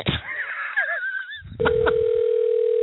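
After a short burst of warbling electronic tones, a click gives way to a steady, continuous telephone dial tone while a phone call is placed, holding at an even level to the end.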